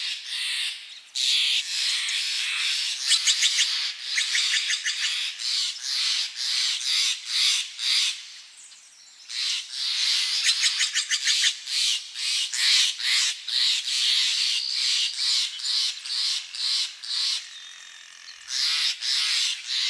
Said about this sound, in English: We leave you this week just north of Marin County, along the banks of the Russian River. Now, there are many songbirds that call the Russian River home, and one day Ed Herman recorded as many as he could. Here's a sampling.